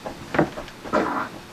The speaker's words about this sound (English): That was a real fart there. See? It did sound like that.